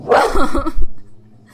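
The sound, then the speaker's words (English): A dog barks a few quick times, loud and sharp, before the sound trails off into near quiet. No one speaks. “But we'll pause if the dogs bark too much.”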